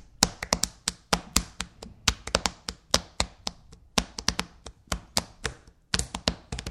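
Hands drum a quick, steady beat on a tabletop: a long run of sharp, dry taps with some accented hits, played alone with no talking.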